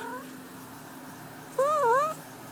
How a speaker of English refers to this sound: I have a little kitty. I don't know if you hear her, but that's my little kitty. She's so cute.